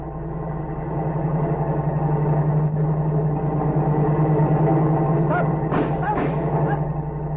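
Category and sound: vehicle, car approaching and passing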